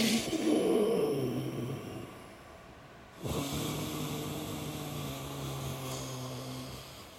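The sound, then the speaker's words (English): A person demonstrates slow, hissing breaths from the diaphragm: one long raspy exhale, a brief pause, then a second steady, airy hiss with a faint low hum, moderately loud. “And it will eventually develop into the hissing kind of...”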